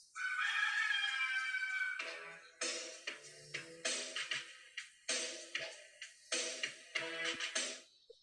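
A loud, drawn-out rooster crow rings out up front at the start of the wrestling entrance theme of The Red Rooster, Terry Taylor, then gives way to punchy, rhythmic music stabs hitting in a steady beat, with no one talking.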